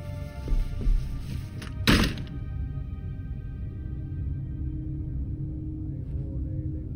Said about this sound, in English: He pocketed the hair as if it were the most normal thing in the world, and left, going into his own room and closing the door smartly behind him.